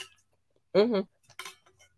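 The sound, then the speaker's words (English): Someone takes a quick swig of water from a glass: faint clinks, then a short voiced gulp and a breathy exhale, with no talking. “Hold on, let me get a swig of water.”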